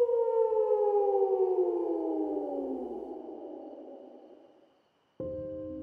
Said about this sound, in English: As I went to my truck, I could hear a howl in the distance.